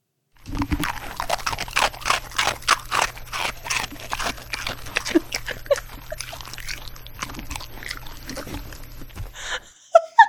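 A dog chews and crunches a hard Biscoff biscuit, with rapid, irregular crunches for about nine seconds over a steady low hum, then a few sharp clicks.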